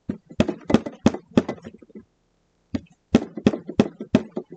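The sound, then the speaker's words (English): Firm, evenly spaced knocks on a wooden door, about four in a row, a short pause, then another run of five, fairly loud with no voices. “We were sitting there eating when there was a knocking at the door.”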